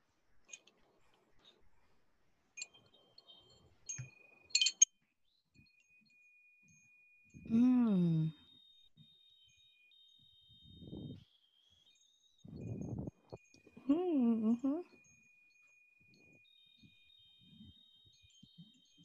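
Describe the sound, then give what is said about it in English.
Chimes are played: light tinkling taps ring out at first, then faint, steady high-pitched chime tones linger for several seconds while a voice makes a few brief, wavering sounds over them. “Okay, well, I have the chimes.”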